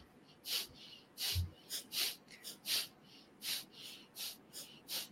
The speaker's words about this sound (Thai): หายใจเข้าเนี่ยช่างมันนะหายคุณจะหายใจเข้าหรือเปล่าไม่รู้นะแต่เราจะมาหายใจออกแบบทีๆกันทีๆนะผมทำให้ดูก่อนนะ